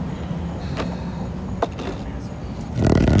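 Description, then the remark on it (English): A car rumbles past, its low engine and road noise swelling louder toward the end, with a few faint clicks and muffled voices in the background. “Watch out. There's We've got a car. Hold tight.”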